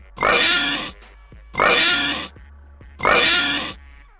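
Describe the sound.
Three loud, drawn-out pig oinks in a steady rhythm, each lasting under a second with short pauses between, close and clear with no talking.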